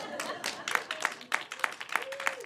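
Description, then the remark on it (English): An audience claps in a sparse, steady rhythm, roughly three claps a second, fairly quiet and thin, with faint murmuring voices underneath. “Listen, if you're going to clap, you got to like do better than that, okay?”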